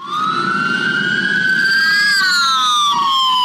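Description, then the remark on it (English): A loud police siren wails steadily during a police chase in Los Angeles of a man fleeing in a golf cart. Its pitch sweeps slowly upward then dips back down, over a low rumbling engine drone, with no voices. “Here is the chase and a statement he yelled out during his arrest.”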